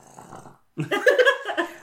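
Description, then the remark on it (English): A pet animal named Pig snorts: a soft, raspy breathing sound, a short pause, then a louder, rough, throaty snort that pulses several times in quick succession before fading. “I'll take the snort as a yes, Pig.”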